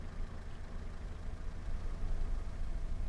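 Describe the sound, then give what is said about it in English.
A car engine idles steadily in a car stopped on a road with its windows lowered, a low continuous rumble with a faint hum and no other sounds, no voices, just the constant drone of the motor. “We heard nothing but the sound of my engine.”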